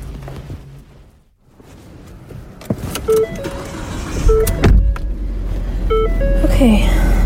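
inside a car

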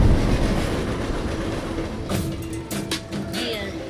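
freight train passing

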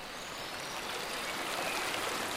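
flowing river water

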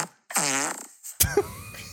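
fart

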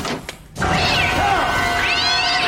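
cat meowing

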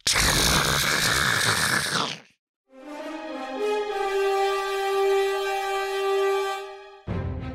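grinding

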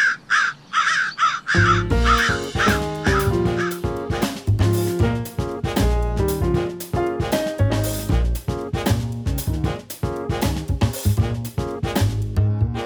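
crows cawing

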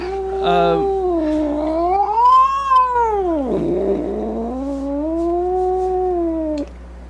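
cat in heat caterwauling

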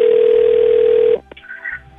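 telephone ringing tone

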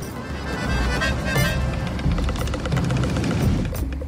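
airplane flying overhead

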